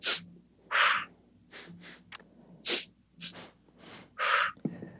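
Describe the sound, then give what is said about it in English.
Sharp breaths repeat in a steady cycle as a breath-work exercise: two quick sniffing inhales followed by one longer, forceful exhale, with brief pauses between rounds and no talking. “And breath work, you know, breathing in for two strokes quickly, out one.”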